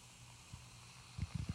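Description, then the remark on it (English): A can of IPA opens with a soft crack, then the beer pours into a glass with a low, bubbling gurgle over a steady fizzing hiss, quiet. “So without any further ado, let's go ahead and pop this bad boy open, give it a nice pour.”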